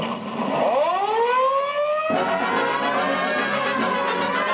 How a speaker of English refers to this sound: You can mind the siren.